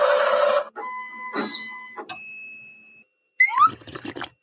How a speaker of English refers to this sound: There are thousands of different designs available in the Ripples library, but you also can upload any image using your phone, apply the desired filter, push the button, and wait about 10 seconds until it's perfectly printed on the foam.